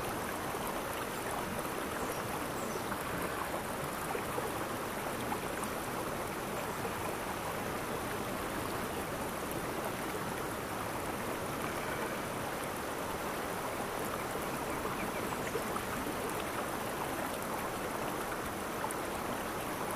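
The Cambian River flows steadily and continuously, a dense, even rush of water with no pauses, moderately loud throughout, with no voices present.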